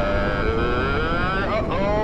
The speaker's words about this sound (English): Main engine ignition. 3, 2, 1. SRB's ignited, and we are...